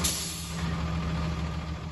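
A school bus engine idles with a steady, low diesel rumble on a weekday morning as a child waits for it and climbs aboard, holding an even level throughout with no voices.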